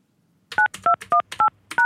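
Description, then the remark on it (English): Five phone keypad tones beep in a steady rhythm, each short dual-tone beep paired with a soft button click, loud with no voices around them, as a password is entered into a voicemail system. “Please enter your password, then press pound.”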